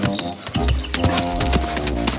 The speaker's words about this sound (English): Then, if you've got enough room to do that as fast as you can, that's what is called a gallop for horses.